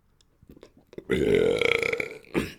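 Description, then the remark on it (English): A loud, drawn-out burp into a microphone lasting about a second and a half, low and throaty with a rough, rattling texture, preceded by faint mouth sounds and followed by a short exhale. “Yeah, so I let loose a little burp every now and then.”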